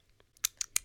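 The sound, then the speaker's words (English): Three quick, wet slurps from someone drinking fridge water to clear something in the throat, each a short sharp burst with brief gaps between. No one is talking. “Wait, let me drink some water. Ew, trigger warning, slurping.”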